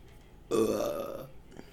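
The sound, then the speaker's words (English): A single loud burp rumbles for about three-quarters of a second, rough and throaty, then quiet returns. “I mean, I have to burp at least once in one of these goddamn videos.”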